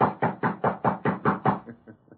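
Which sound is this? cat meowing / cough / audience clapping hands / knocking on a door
knocking on a door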